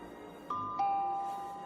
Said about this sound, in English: Isn't that the doorbell?